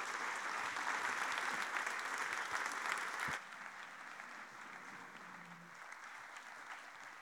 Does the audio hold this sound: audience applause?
yes